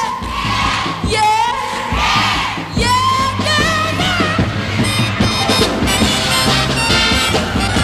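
A large live concert crowd chants "yeah" together in response to the performer, a loud, sustained chant of rising, overlapping voices repeating in bursts over a steady band playing beneath them.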